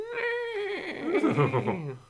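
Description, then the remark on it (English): A horse whinnies loudly: a high, strained opening note that breaks into a shaky, descending neigh with rapid vibrato, lasting about two seconds. “So for all you horse fans out there.”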